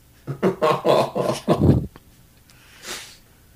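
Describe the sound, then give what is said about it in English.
A person mimics a dog with a quick run of about six voiced, barking woofs, loud, followed by a pause and a single breathy huff. “That's a lethal woof woofs.”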